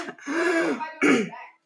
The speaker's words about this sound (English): You want to know how to get through the Walmart line quick, though? Start coughing and hacking. Just do a quick little.